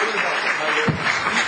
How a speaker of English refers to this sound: Let's give our first set of panel members a round of applause.